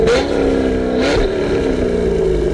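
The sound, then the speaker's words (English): A loud car engine revs hard, its droning pitch climbing in two quick surges before holding a steady high whine, with no voices. “So let's get revved up.”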